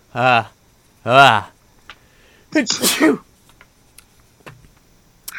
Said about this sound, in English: Oh, hold on, I have to sneeze.